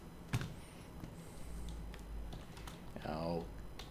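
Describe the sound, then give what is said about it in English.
Scattered clicks of typing on a computer keyboard as someone looks up the name of a book's author, quiet and uneven, with a low background hum and a short vocal sound toward the end. “I can't remember the name of the author, and let me just look it up here. I moved my keyboard because the cat was about to climb on it.”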